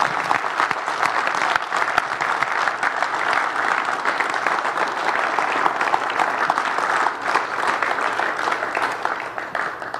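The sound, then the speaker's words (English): A crowd claps for God after a prayer, steadily for about ten seconds, a dense, even wash of many hands with no clear rhythm, holding at a constant loudness throughout. “Let's clap for God”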